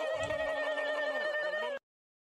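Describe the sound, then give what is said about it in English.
A loud Victory Screech sound effect, triggered by a chat redeem during a stream: one sustained, shrill, slightly wavering cry lasting nearly two seconds before cutting off abruptly, with no talking. “I should have disabled my redeems, because now my chat redeemed Victory Screech and I heard it.”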